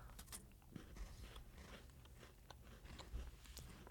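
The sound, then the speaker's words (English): Chewing of chocolate during a tasting, with soft repeated crunches and moist mouth sounds in a steady rhythm, quiet, and no voices. “So you let it, you chew it a little bit.”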